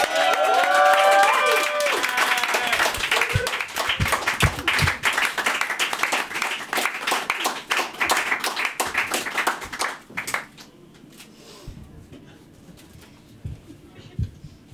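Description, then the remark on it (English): Dense audience applause for a performer at the end of his set, with some cheering early on, holding steady and loud for about ten seconds before thinning out to a few scattered, fading claps. “I think that needs more applauding.”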